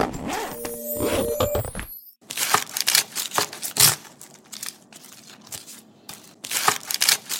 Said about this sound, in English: Open her up. Let's hear that sound. Unzipping.